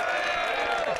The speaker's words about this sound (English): Smack that button. Which smack that cheer button. Which one? Cheer the intro.